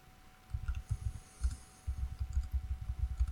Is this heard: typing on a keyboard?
yes